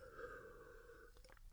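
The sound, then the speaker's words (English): A faint steady hum gives way to a few soft clicks and gulps near the end, like someone quietly sipping and swallowing water. No one speaks. “I don't have Parker, so if I take a sip of water, it's actually a long pause.”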